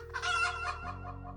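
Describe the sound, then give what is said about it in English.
A pet hen named Tuk-Tuk, belonging to Edwin Robinson, clucks in a quick burst of harmonic, throaty calls, clear, trailing off into softer clucks with a low steady hum underneath, in Falmouth on June 4th, 1980, as a thunderstorm passed over. “So, to be on the safe side, Edwin figured he'd better go outside and get his pet chicken, Tuk-Tuk.”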